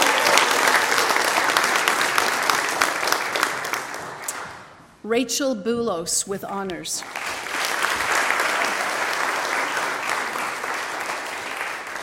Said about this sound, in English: I fail to mention that he has honors as well. So let's give him a clap.